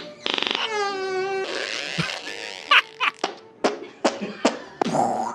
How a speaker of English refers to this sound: Am I a juvenile to find this funny? Yes. Am I happy that it's children that are making the fart noises? Also, yes, because they seem very happy as they're doing it.